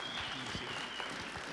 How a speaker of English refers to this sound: You can give him a great round of applause.